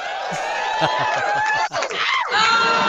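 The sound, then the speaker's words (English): A crowd cheering sound effect from the TV show Married with Children: a dense crowd whoops and cheers, many overlapping voices swooping in pitch with rising and falling "woo" calls, loud and sustained for the whole stretch with a brief dip midway. “All those clips, like those wooing kind of crowd cheering sound effects, those are right here.”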